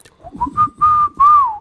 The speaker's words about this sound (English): One day, as you age, he started whistling. I swear to God.